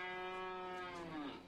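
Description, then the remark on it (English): A single long cow moo, steady and droning before dipping in pitch at the end, heard alone at a modest volume with no voices, from cows grazing on a rolling hill in a farm's back pasture in golden light. “A little girl on her bicycle appears through the cows.”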